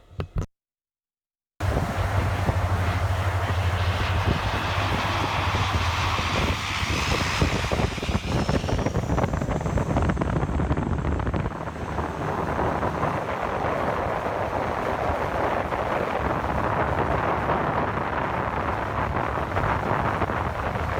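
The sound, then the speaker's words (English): A firefighting plane skims just above a lake's surface, scoops on its bottom taking in water, its engine a loud, steady roar over heavy rushing wind noise, the pitch shifting midway as it passes by. “they act like they're landing on a lake, but they are not. They're just skimming above the surface.”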